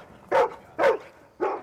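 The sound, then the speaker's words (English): A disaster-response dog in training barks three times in a steady rhythm, each bark loud and sharp, with short quiet gaps between them and no one speaking. “Yes, that's a good dog.”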